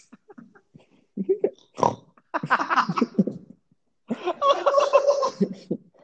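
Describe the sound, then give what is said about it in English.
A voice imitates a pig, making a string of grunting, snorting oinks in loud bursts with a short pause in the middle, ending in a squealing, nasal stretch. “Yes, that was my pig.”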